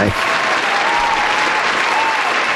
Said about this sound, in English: Yeah, you get a hand clap on that one.